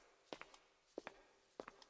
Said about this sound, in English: Carpets with complex woven patterns snaked their way down the center of the corridor. I heard his footsteps first. The far end of the hall was shrouded in darkness.